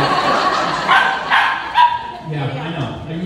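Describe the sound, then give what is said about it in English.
A few sharp dog barks ring out in quick succession at a doggy daycare during a comedy set, loud, over a steady murmur of indistinct voices, followed by a lower whining, yelping sound near the end. “Sometimes people laughed at my jokes in between dogs barking and me fucking petting dogs and people cleaning up pee and shit during my set.”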